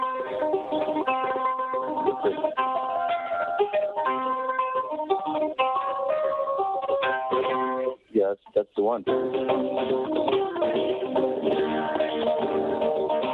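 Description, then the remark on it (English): An eight-string cigar box guitar plays a steady run of twangy, ringing string notes that sustain and overlap, the other strings resonating along, breaking off briefly partway through before carrying on. A voice speaks a few words. “Is that the cigar box? That's my cigar box. Holy shit. I didn't know a cigar box could sound like that.”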